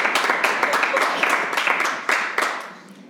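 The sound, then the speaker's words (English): A crowd applauds on the cue "Kirsten Gillibrand, please clap," with dense, crackling, overlapping hand claps, steady for about three seconds before tapering off. No one speaks over it. “Kirsten Gillibrand, please clap.”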